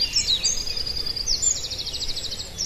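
Two different bird species sing together, overlapping: quick descending high whistles alongside a rapid, buzzy pulsed trill, steady, over a low outdoor rumble with no talking.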